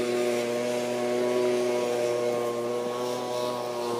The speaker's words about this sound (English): I think somebody's mowing their lawn during the winter. Oh no, it's a leaf blower.